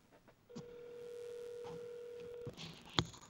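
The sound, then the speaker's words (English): A phone line rings out with one steady, mid-pitched ringback tone lasting about two seconds, then a brief click follows, on a call placed to order a pizza. Nobody answers and no one speaks. “How long do we have to be on hold here?”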